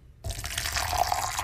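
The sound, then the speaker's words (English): Hot water pours steadily into a container, a continuous splashing stream that starts abruptly and keeps going, with no voices over it. “Pour number two is hot.”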